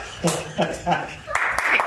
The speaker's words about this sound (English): Thank you. You were right. Your instincts were right. It deserved a round of applause.